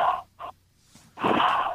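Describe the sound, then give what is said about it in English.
Heavy, raspy breaths come through a thin home phone line: a short wheezy exhale, a brief second one, a pause, then a longer rough drawn-out breath, fairly loud. “It's your mom just breathing. Does Darth Vader live in your house?”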